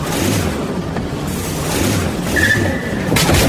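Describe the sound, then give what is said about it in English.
A remote-controlled toy car, steered by slowly drawing a finger across the touch pad of its remote, drives with its motor rumbling steadily, a brief high whine partway through and a rough burst of noise near the end. No one speaks. “Now, draw your finger very slowly across the pad to drive the car.”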